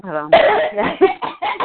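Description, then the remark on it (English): A short voiced hum gives way to a run of harsh, raspy throat-clearing bursts, four or five in quick succession, fairly loud. “Let me clear my throat.”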